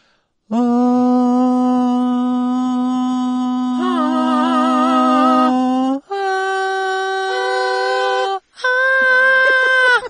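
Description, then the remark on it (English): Human voices imitate cow moos in three long, loud, droning calls. The first is held for several seconds and wavers partway through, followed by two shorter, higher-pitched moos. “That was the cow just walked through? Basically, yes.”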